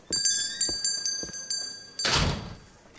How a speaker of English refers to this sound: I'm locking the doors.